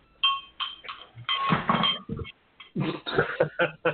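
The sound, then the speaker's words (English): An antique cowbell, painted with a bird on one side, a flower on the other and a heart, bounces off a counter: a ringing metallic clang first, then a string of irregular, loud clanks and rattles as it jostles and settles. “It sounds a good bouncing off the counter.”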